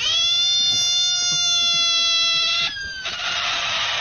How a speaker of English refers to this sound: I got woken up by a screaming frog at 3 a.m. in the morning when my cat's brought one into the house. Oh, yeah. So that sound at 3 o'clock in the morning emanating from, I imagine, the kitchen.